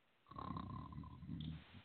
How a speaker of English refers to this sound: And then I didn't realize it was him at first. I'm like, I hear snoring. Who is that?